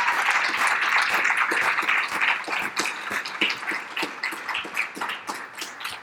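A crowd breaks into steady applause, many hands clapping in a dense, continuous patter that stays loud for several seconds before thinning out slightly toward the end.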